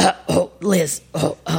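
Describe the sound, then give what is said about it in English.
A voice imitates a father's nervous cough: about five short, throaty, voiced bursts in quick uneven succession, moderately loud, with no other sounds around them. “I used to make him nervous, and he would cough.”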